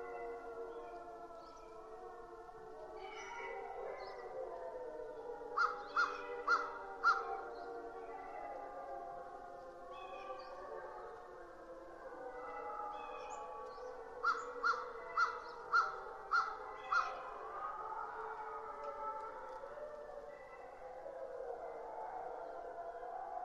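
A chorus of wolves in Ontario's Algonquin Park, recorded by Bernie Krauss, howls together in long, wavering, overlapping cries, with bursts of higher yips and barks breaking out twice, echoing in open air.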